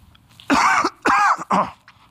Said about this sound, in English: there are going to be moments I will be coughing, and he would mute it really quick.